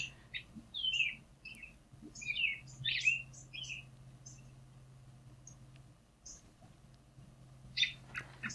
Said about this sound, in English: There's a robin call, which is very common. You'll hear in your yard. Maybe your cat has just come out to the yard and the robin is just letting all the other robins know cat is in the yard.